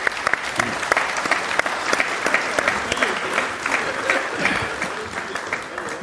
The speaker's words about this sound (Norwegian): Ja, vi må ha en liten applaus. Ja, vi må.